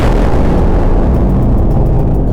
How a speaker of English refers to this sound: Soothing sounds of a nuclear explosion hit me every time.